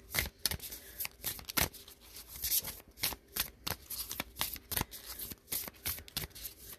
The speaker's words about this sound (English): Oh yeah, the cards are very stiff, shuffling. You can hear I keep stopping.